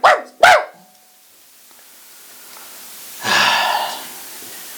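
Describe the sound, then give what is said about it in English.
A dog named Paris gives two quick, sharp barks, one right after the other, then after a quiet pause lets out a longer, breathy huffing sound. No one speaks. “Paris, my dog, if you see him going to the room, bark you better times.”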